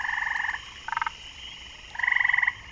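Frogs croak in rapid, pulsing trills at a factory's partly flooded loading docks with lily pads, three bursts with short gaps between them, the last one loudest. The calls are clear over a quiet background, with no one talking.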